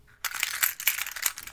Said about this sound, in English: The keys were out of his pocket, back in his hands. Chink, chink.